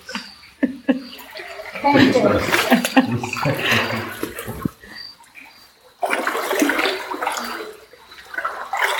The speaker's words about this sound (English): Okay. We're now wading through the water. Based on the amount of wildlife we've seen already in this cave, I'm kind of afraid of what's in the water. Up to our knees so far, but we hear it's going to get deeper.